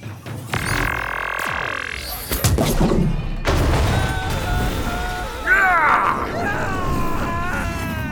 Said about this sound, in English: I leap back from the bridge as Golok's cannons fire at my beacon's placement, tearing open the Imperial bridge to the void.